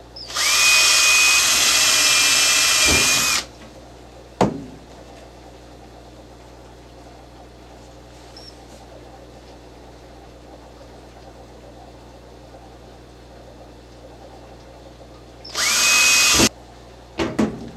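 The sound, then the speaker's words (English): A power drill whines loudly for about three seconds while drilling holes at a slight angle, a sharp knock follows, then a long quiet stretch before the drill runs again briefly near the end, with no talking. “We're just going to go right down through these and I'll drill all these holes.”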